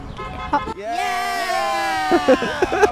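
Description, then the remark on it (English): A car horn gives one long, steady honk lasting about a second, loud and buzzy with a bright tone, as a woman driving a passing car honks when asked to, while people chatter just before and right after it. “Oh, look at that car right there. Oh, tell her to honk.”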